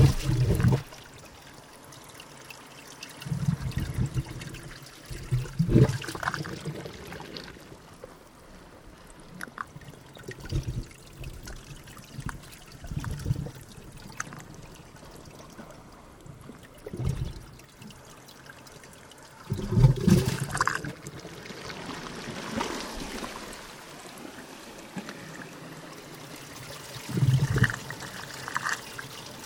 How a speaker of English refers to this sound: Off the coast of New South Wales, Australia, … got his microphone really, really close to those tiny little wavelets found in tidal pools. He took the sounds, did some editing and some mixing, and came up with a composition called ….